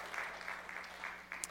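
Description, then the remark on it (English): A faint smattering of audience clapping, a handful of soft, scattered claps spread over a brief moment, sounding thin rather than a full round of applause. “But anyway, I heard a clap there.”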